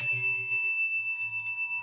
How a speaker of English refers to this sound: Allow the sound of the chime to call you to presence.